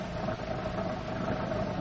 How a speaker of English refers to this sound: Thought I heard. Wait a minute. It's a car.